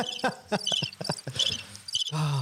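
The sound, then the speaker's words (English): Cricket chirping sound effect: a string of bright, rapid chirps in an uneven rhythm, fairly loud, with no talking over it. “I think there's a crickets button here somewhere.”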